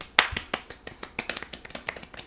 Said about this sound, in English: Cue the applause noise.